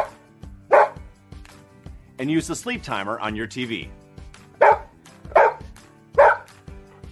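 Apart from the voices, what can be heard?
dog barking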